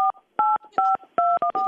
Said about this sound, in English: Ma'am, I need your phone number. I just gave you my phone number. I'll do it again. Hold on. It just sounded like dial tone. Ma'am, I'm going to hang up. Did you get it? These aren't numbers. Those aren't numbers. They're dial tones.